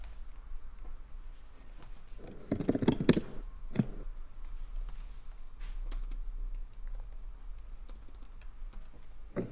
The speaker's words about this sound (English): you can hear all those keyboard noises. I know, right? It's like an ASMR.